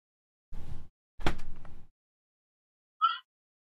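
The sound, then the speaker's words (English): Two dull, heavy knocks thud against a door a moment apart as a contactless food delivery arrives. After a pause, a short, faint high-pitched beep, the delivery driver honking their horn, follows. No one speaks. “And the people who, you know, we ordered food from in a contactless delivery fashion are knocked on the door and honk their horn.”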